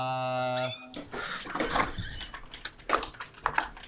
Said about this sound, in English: That's a loud door.